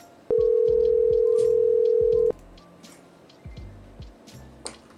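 A phone line rings out once on an outgoing call: a steady, loud ringback tone lasting about two seconds, then fading to quiet background murmur.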